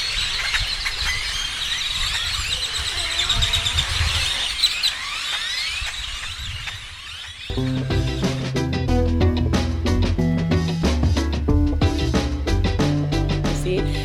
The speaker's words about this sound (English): And now, my friends, we will listen to one of my favorite sounds on earth. Let's see if you can guess what it is. If you guessed a horse eating grass, you are 100% correct. And the birds.